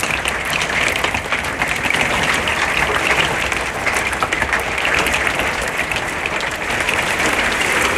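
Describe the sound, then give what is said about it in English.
A heavy hailstorm: a dense, continuous clatter of countless small impacts, loud and steady throughout, crackling like applause, with no voices. “Man, I've not heard a hailstorm like that in a very long time.”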